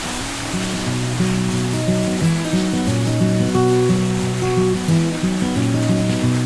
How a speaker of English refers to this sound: Oh, this is nice. So this is a substantial waterfall in terms of distance, just not the amount of water.